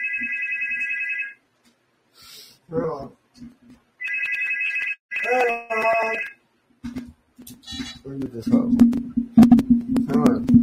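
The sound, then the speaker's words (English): A phone ringtone trills in repeated loud bursts, with short pauses between rings as a man talks in between and over it. “You're going to make me pick that shit up, ain't you?”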